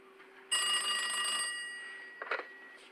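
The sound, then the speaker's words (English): An old-style telephone bell rings in a single loud, metallic burst that rattles and slowly fades, followed by a couple of soft clunks as the handset is picked up. “Can you call me back? I want to test out the phone.”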